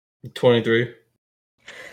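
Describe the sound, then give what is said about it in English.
A single loud sneeze: a quick intake, then a sharp voiced burst that fades within half a second, followed by a soft breathy exhale. “Excuse me. Bless you.”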